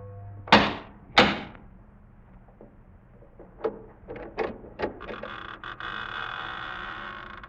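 Two loud, heavy knocks on the massive oak door of a chateau on a high bluff, spaced about half a second apart, followed by softer clicks and rattles, then a long, steady creak.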